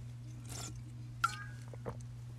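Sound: drinking a beverage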